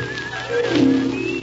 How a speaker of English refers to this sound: Listen. Listen. What? I thought I heard someone. Someone whistling.